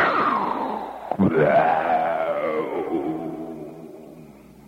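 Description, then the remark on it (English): A voice imitates the giant mushroom-cloud explosion of an atom bomb test that opens a monster movie: a loud, droning roar breaks off briefly, then swells into a sliding, moaning tone that slowly fades out over several seconds. “See, you see this giant mushroom explosion. That's the beginning. It opens up with something like this.”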